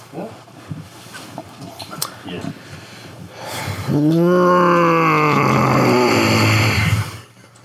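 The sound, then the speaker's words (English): After a few seconds of quiet rustling and soft clicks, someone clears their throat as practice in one loud, drawn-out, voiced rumble that wavers in pitch for about three seconds before stopping abruptly. “I was like clearing my throat.”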